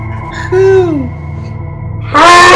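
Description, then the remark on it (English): An owl hoots twice: a drawn-out call that slides downward in pitch, then after a pause a louder, harsher second call, over a steady low hum. “That's how owls sound.”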